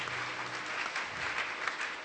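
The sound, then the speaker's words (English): The Koinonia audience claps steadily for people coming to the front to line up before Jesus Christ, a dense, sustained wash of many hands with no clear individual beats, fairly loud and without speech over it. “Clap for them, Koinonia.”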